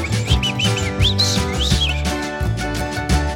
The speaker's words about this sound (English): You know the birds go.